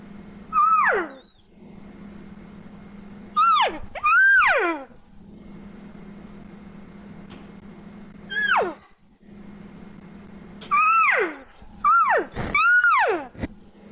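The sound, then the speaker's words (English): A caller imitates an excited cow calling to a bull, with about seven high, whiny mewing calls that rise then slide down in pitch, coming singly and in quick pairs or triplets over a low steady hum. “Or if I'm like doing, like I'm moving in on a bull, I'm calling to that bull, trying to sound like an excited cow coming in.”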